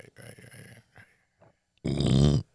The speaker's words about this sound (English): I love how you're burping into the mic.